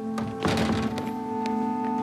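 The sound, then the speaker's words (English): A pet knocks objects over: a few scattered thunks and a brief clattering burst over a steady electrical hum with no talking. “He's knocking shit over.”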